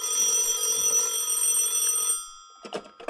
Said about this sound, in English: At 11 o'clock at night, he is in his bed and sleeping soundly. But not for long, for the telephone beside him shrills out.